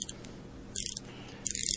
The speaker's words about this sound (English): Oh, I didn't start my clock. I'll just set it here.